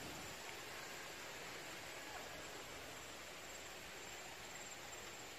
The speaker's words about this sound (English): The only thing we can see is these little green sprouting rice crops coming out of the water, and just the sound of running water down the hill. It's blissful.